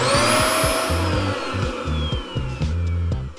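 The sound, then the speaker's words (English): A vacuum cleaner runs loudly and steadily for a few seconds, its motor roaring with a high whine that slowly drifts downward in pitch, with no voices. “But after that, they made vacuum cleaners.”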